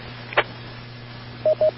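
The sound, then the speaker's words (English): Over steady radio hiss and hum, a brief crackly burst is followed by two short, evenly spaced touch-tone beeps, each a clean mid-pitched tone sent over the transmitter. “But I know it sounds like he's trying to get his tones straightened out.”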